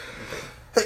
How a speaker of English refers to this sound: Bless you.